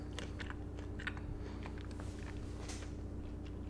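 Chewing of a sticky, crunchy candy bar made of peanuts, peanut butter and caramel: wet mouth sounds with small crunches scattered irregularly over a steady low hum, no talking.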